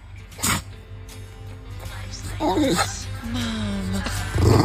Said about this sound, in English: It's a wet nose Wednesday. We found a bulldog that can say mom. Mom. Mom.